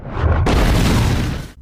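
sound effect, explosion sound effect

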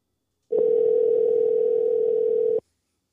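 signal or alarm, telephone dial tone

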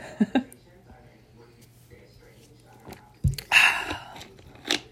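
food or drink, sipping ginger ale

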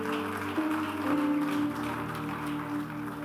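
crowd, audience clapping

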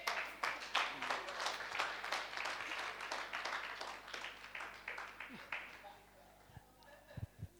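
crowd, audience clapping

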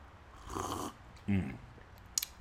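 food or drink, slurping coffee

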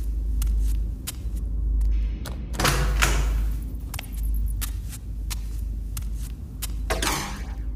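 household object, door closing by itself

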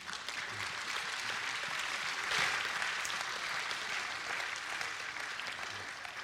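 crowd, audience clapping

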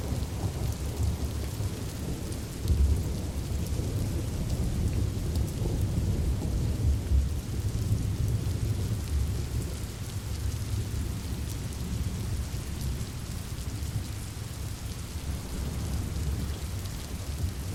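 nature, heavy rain downpour

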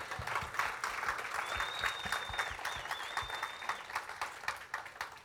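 crowd, round of applause

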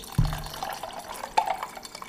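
food or drink, liquid being poured

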